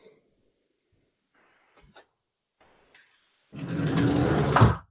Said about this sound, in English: I'm just going to go close this window because there's a lot of noise. Okay. Squeak.